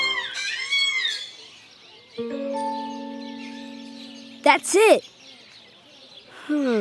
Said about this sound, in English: Let's listen to another. This is the African gray parrot.